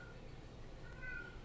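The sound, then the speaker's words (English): A cat named Puff, upset at a closed door, lets out a soft, drawn-out meow, a single plaintive call rising near the end over a low, steady background rumble. No one speaks. “Here comes a big cat.”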